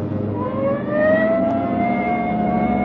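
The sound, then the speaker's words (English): A police car siren wails in a steady rising sweep over the low rumble of an engine, loud as the car drives along to a call at 420 St. John's Place, with no voices. “All right, double around, Ben. Hit the siren.”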